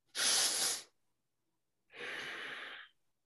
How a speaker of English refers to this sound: So for example, if I do 9 breaths, you close eyes, you just force yourself breathing in.